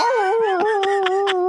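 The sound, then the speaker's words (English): A person imitates a beagle's howl: one loud, sustained, wavering note, with brief breathy pulses breaking through as it carries on. “I want it to be a beagle so I can howl when it finds out.”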